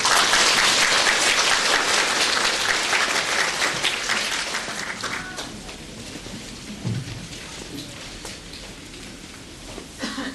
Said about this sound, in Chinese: 大家鼓掌欢迎。